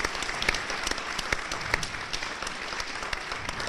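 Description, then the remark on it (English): A crowd applauds steadily, a dense wash of many overlapping hand claps with a few sharper individual claps standing out, sustained at an even level for several seconds. “I think that merits some applause, too.”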